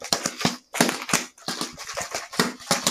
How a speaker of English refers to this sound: I'm gonna make a little sound with my water bottle here.